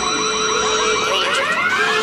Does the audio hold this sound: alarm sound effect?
yes